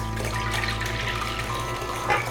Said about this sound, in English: Now what we're going to do, we've already measured out 3 cups of whole milk. And we're going to pour that into a container.